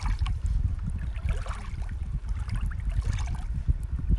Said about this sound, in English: We're hearing the waves. Six senses, really. Right. Yeah. We're hearing the waves. We're seeing the stars on the bottom of the lake.